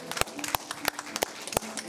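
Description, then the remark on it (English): Congregation applause giving the Lord a round of applause, with sharp, evenly spaced claps landing about three times a second over a dense wash of scattered clapping, and voices mixed faintly underneath. “Can you give the Lord a round of applause over the building?”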